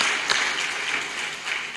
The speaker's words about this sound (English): Give a strong applause to the Lord.